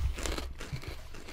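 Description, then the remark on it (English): Loud, crackly crunching of a crisp snack being chewed, a dense run of brittle snaps and crinkles over about a second and a half, with no talking. “Oh, that one's kind of crunchy. I thought I broke a tooth.”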